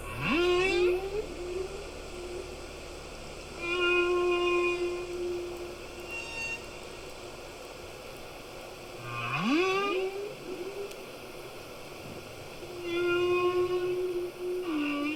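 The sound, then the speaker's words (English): Humpback whale song: long, tonal moans and rising whoops repeating every few seconds, with harmonic overtones, heard underwater against a steady hiss of background noise, no voices present. “So I guess the humpback whales, when they produce these songs, it's on the breeding grounds.”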